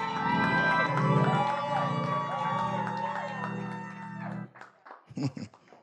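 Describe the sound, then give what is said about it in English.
A large audience shouts and cheers loudly, with some clapping, for about four seconds, a dense roar of many voices, then cuts off abruptly, leaving a single voice speaking briefly afterward. “I still won't take that. Because some of you have clapped.”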